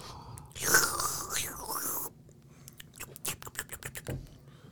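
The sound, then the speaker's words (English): A loud slurping sip of hot coffee, taken while tasting and rating the coffee, lasts about a second and a half, followed by quieter swallowing, lip smacks and small mouth clicks. No one speaks. “Let me take another sip and give my definitive expert opinion.”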